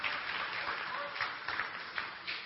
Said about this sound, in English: Sit down. Yeah, y'all can clap